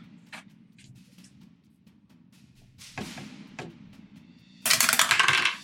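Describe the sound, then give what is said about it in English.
Dice clatter across a hard tabletop as players roll for initiative: a few scattered clicks, then a longer, louder tumbling rattle near the end, all over a low background murmur. “Now, I need everybody to go ahead and roll for initiative.”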